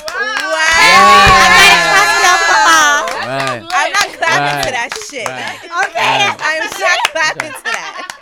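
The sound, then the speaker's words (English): A group breaks into loud clapping mixed with cheering voices for about three seconds, then the applause drops away and people carry on talking. “I'm not clapping to that.”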